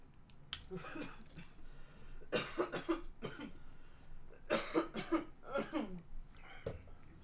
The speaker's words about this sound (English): You cough like an old guy. I cough old guy? No, you coughed like an old guy.